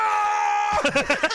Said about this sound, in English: He starts screaming. I know. It sounds like they've taken a soundbite of when he's being killed in one of the movies.